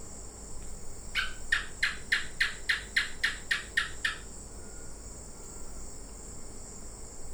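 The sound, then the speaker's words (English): A gecko in Papua New Guinea calls with a quick run of about ten sharp, evenly spaced chirps lasting a few seconds. A steady insect hum carries on underneath before and after. “And this is a gecko he recorded in Papua New Guinea.”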